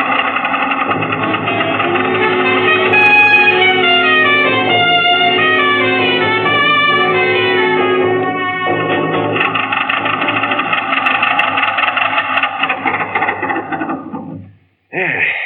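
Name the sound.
car engine running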